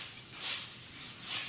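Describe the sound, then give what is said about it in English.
Soft, dry rustling of straw, a crisp hissy texture rising and falling in two gentle swells. Quiet, with no voices. “It was made of straw, which sounds like this.”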